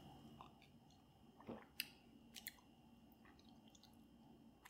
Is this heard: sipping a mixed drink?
yes